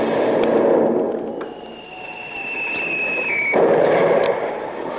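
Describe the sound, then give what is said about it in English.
A cannon shot hits a ship: a thin, high whistle slides slightly downward for about two seconds, then a loud, rough crash bursts out, with similar heavy rumbling noise at the start. “That shot must have carried away the rudder.”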